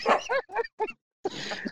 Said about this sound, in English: The dog did not like that at all.